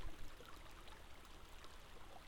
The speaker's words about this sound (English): This is better than the other one, but it's still a wide fucking river from all the snow melting.